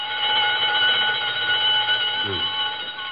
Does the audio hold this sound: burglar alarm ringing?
yes